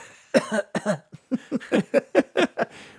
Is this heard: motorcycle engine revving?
no